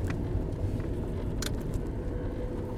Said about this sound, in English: We're driving by another car.